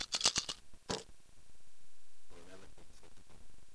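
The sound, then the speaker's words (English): A quick burst of sharp clicks and clatters as six dice, rolled for damage in a game, tumble and settle within the first second, followed by a pause and then a person talking. “4, 6 dice.”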